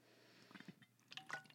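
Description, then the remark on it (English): Quiet sipping of Smart Water from a water bottle: a few soft wet slurps and little liquid squishes, then a brief swallow-like gurgle, with no talking. “Not sponsored, but I'm going to take a sip of smart water.”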